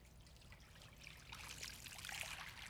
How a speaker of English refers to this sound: I have a feeling that when that water began to fall in that basin, everybody that was talking around the table got quiet.